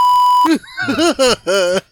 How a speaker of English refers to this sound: Wow. Dial up. Did somebody call the phone? No, if you call the phone, it's over. It's over.